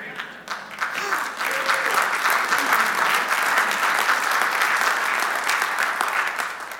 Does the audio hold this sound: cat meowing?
no